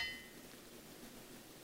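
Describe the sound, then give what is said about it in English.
A single metallic clang of a blacksmith's hammer striking metal on an anvil at Smith Ranger's smithy rings out at the start, its bright tone fading quickly into a steady background hiss. “Clang?”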